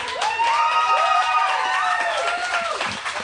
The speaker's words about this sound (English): It's a sparse applause for that. Everyone else is like, I don't know.